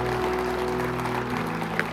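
A crowd claps steadily in a dense, sustained wash of applause, a hand clap of praise to the Lord during morning worship, with a low sustained musical tone humming underneath and no voices speaking.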